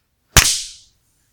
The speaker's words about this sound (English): I did not hear anyone else clap. No, I clapped. I clapped. It's on my recording. It should be picked up.